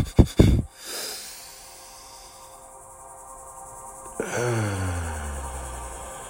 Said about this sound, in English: Inhale. Hold it at the top. Exhale. Inhale. Expand that diaphragm. Exhale.